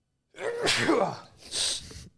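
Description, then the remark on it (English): A loud sneeze: a drawn-out voiced wind-up followed by a sharp, hissing burst, then quiet. No talking accompanies it. “Sneeze-a-thon here.”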